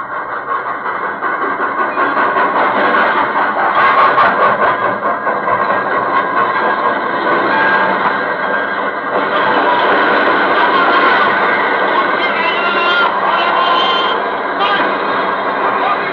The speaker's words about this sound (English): A leave train was just coming to a halt in the station at Villefranche.